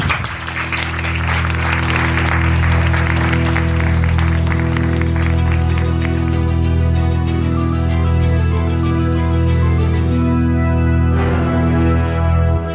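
A burst of crowd applause, dense and crackling at first, thins out over several seconds while a loud, steady low drone of music holds underneath throughout.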